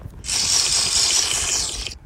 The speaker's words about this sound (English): Wait, I'm going to take a sip of my Monster.